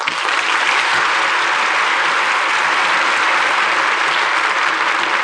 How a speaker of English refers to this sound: And that applause will assure you both how much we enjoyed tonight's performance.